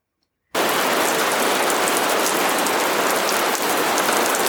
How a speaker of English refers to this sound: It is raining.